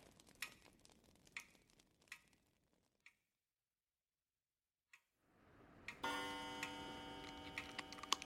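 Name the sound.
grandfather clock ticking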